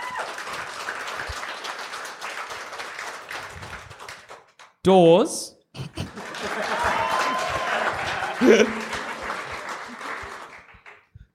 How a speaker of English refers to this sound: So at the end of the day, theories. Pre-shot. What do we think? Give us an applause.